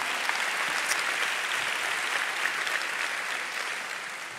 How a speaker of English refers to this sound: Can I have an amen and a clap for Jesus? Hallelujah.